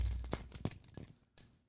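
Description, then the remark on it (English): A quick series of bright metallic clinks and jingles, several sharp hits in an uneven rhythm from a set of keys being shaken, fairly soft, with no voices. “What are you going to pull out? Ready? Plus? My keys.”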